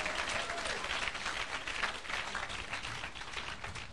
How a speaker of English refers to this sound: Oh, give a clap of praise unto the Lord.